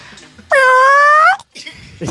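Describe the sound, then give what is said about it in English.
A band's bass player imitates a dinosaur with one loud, drawn-out wailing cry lasting under a second. It is high, cat-like and slightly rising in pitch, followed by a short pause and faint shuffling. “All right, let's get your dinosaur impression.”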